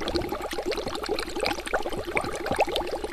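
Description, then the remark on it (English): Steady, gentle bubbling of liquid in a building's algae bioreactor panels as the algae bubbles up, oxygenates, takes in carbon dioxide and flows out; a dense stream of small soft pops and gurgles at an even moderate level, with no voices. “You hear this gentle bubbling sound in the background because the algae bubbles up in the panel, oxygenates, takes in carbon dioxide, and then flows on out.”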